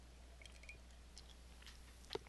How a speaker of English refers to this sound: Hang on one second, I'm going to take a sip of water here.